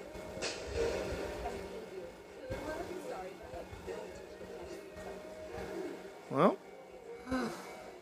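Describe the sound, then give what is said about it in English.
A train passes with a steady, broad rumble and clatter, a sharp rising squeal cutting through near the end, with indistinct murmuring mixed underneath. “Oh, we can hear the train that Shinji never got on.”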